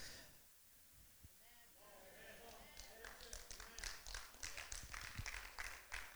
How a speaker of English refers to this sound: Some of you just did a little Tiger Woods on me right now. Golf clap.